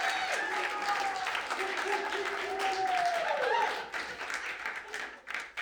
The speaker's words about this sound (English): You know what we haven't done? We haven't clapped for Pastor Tyler in a long time as he comes up.